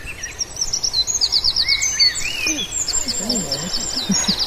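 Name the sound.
wren song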